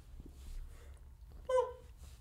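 yawn

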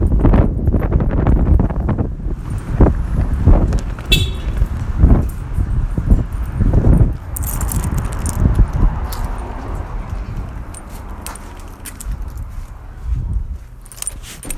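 strong wind blowing

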